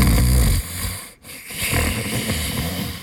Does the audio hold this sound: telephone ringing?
no